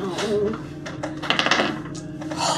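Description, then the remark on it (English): Hard metallic clicks and rattles of steel dice tumbling across a surface during a tabletop game's dexterity saving throws, a quick cluster of sharp impacts near the middle, fairly loud beneath faint background voices. “Steel dice rolling are working well.”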